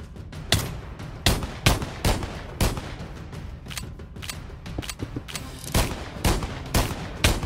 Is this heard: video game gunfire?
yes